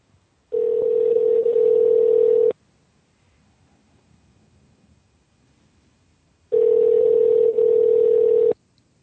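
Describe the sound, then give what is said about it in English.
A phone call placed from a TV radio show rings out unanswered: two long, steady electronic ring tones, each about two seconds, separated by a silent pause, heard clearly with no one talking. “Yeah, we don't want to leave a message twice, no, I don't think.”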